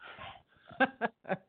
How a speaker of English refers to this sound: Oh, no, this is your neighbor's dog. Oh, okay. Is it loud? So from, I can hear him, yeah.